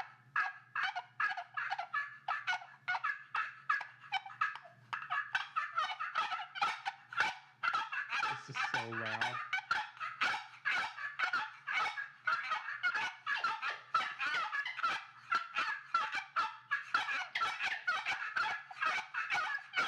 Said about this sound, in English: Is there a band of turkeys coming in? We're going to leave all these calls here today.